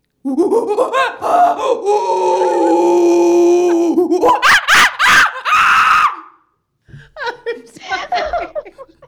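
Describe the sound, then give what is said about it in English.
A person hidden behind a booth imitates a howler monkey call: a long, low, droning vocal roar that rises into several loud, strained whooping bursts, followed by a pause and brief laughter. “I'm like, do the howler monkey.”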